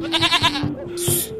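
A goat bleats once, a loud wavering cry with a quick tremble that lasts about a second, then trails off into a hissy rustle.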